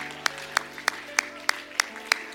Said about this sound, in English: Hallelujah. Oh, go ahead and clap your hands unto the Lord right now.